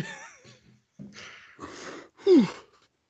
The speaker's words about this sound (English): You perfectly tried to make that yawn longer. I was going to, but I didn't, you know.